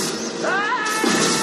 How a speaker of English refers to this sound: You're off the air, Bison. Yeah, because he knocked him into television monitors.